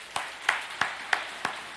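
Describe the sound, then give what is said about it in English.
An audience claps hands in praise to God one morning, in a steady, even rhythm, about six sharp unison claps over a continuous wash of scattered clapping, with no talking. “Let's give him a hand clap of praise this morning.”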